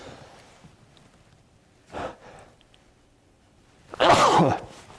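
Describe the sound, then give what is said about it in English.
A sharp inhaled breath around two seconds is followed by a loud, explosive sneeze near four seconds, with quiet background noise in between and no talking. “At the very end of the Bible, in Revelation chapter 2, pardon me, I'm going to sneeze.”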